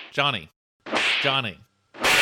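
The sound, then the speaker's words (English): Three loud slap sound effects in quick succession. The first two carry a ringing, voice-like tone, and the last is a sharp, noisy crack that cuts off abruptly. No speech. “Normally we'd alternate this and chest compressions if you're going to cardiac arrest, but here, just and okay, he's maybe slap him around a little bit.”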